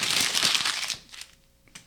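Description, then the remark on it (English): An unused sheet of paper is crumpled up, a dense burst of crackling crinkles for about a second, then a few softer scattered crinkles as it settles. “That was an unused piece of paper. You just wasted my paper.”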